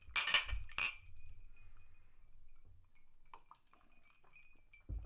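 Drinking glasses clink together in a toast, two quick bright strikes, followed by a faint lingering ring and near quiet, with a soft thud at the very end.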